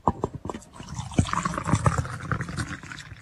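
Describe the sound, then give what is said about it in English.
Hot coffee pours steadily from a big green Stanley metal thermos, a gurgling stream with a few clanks at the start, continuing for about three seconds with no talking. “Let's get the big green Stanley, the big metal thermos over here.”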